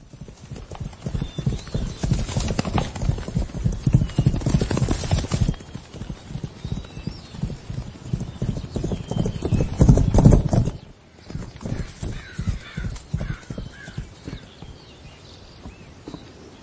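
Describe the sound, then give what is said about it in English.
An older, banged-up, mistreated horse gallops with rapid, steady hooves clip-clopping, the rhythmic beats loud and continuous, briefly easing before picking up again. “But he was a horse that was kind of older, kind of banged up, mistreated.”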